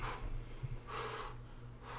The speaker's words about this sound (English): What you breathing heavy for?